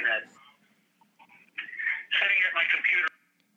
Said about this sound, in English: Sorry. I'm hearing my playback.